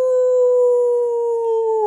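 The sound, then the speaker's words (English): A person imitates a spooky wolf howl for Halloween, holding one loud, steady, drawn-out note that dips slightly in pitch near the end, with no talking. “I try to do the spooky wolf, guys.”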